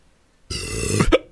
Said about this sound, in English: Was that a tenant burp? Double fucking burp.